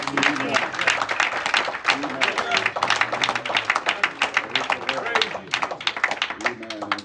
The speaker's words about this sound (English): But give yourselves a hand clap tonight. Praise God.